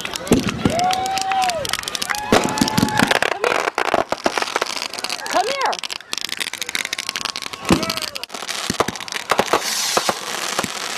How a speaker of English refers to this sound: There they go. Good job. Those are fireworks. Easy. Easy. Can't chase them. They're not like birds.